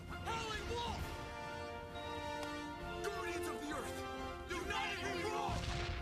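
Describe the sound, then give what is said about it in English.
A loud, rumbling explosion bursts through a busy, dense soundtrack, with heavy low booming energy, layered tones and voices shouting over the blast. “Hey, they even got an explosion and they're not even morphed.”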